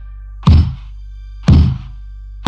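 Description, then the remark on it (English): Slow, evenly spaced knocks on a freestanding carved wooden door with a shiny golden doorknob and no frame, standing in the middle of a forest, heard from a few feet away, about one per second, each a heavy, dull thud that fades quickly. A steady low hum runs underneath, and no one speaks. “What I heard matched what I saw, knocking on a door from only a few feet away.”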